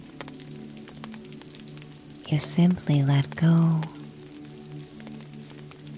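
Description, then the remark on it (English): Soft, steady rain patters into the night at a pop-up camper, with scattered tiny drop ticks over a low hum, while a calm voice speaks briefly in the middle. “The rain will continue to patter into the night, and the pop-up camper will sway and rock, lulling you into a deep sleep as it keeps you safe and warm and dry.”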